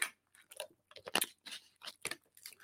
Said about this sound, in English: I got the glass bottles of water. If you guys have ever seen, they're bigger than this. I'm going to have a little sip right now.